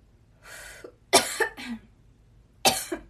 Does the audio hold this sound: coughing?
yes